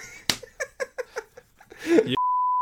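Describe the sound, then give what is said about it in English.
A loud, steady censor beep holds one pitch for about half a second at the end, cutting in right after a string of short, rhythmic vocal bursts that sound like laughter or chatter. “Beep.”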